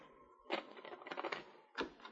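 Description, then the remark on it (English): Soft knocking on the locked door of a cabin at the edge of town: a quick cluster of light, dull raps, a short pause, then one more knock. Quiet overall, with no voices. “The door was locked and he knocked softly.”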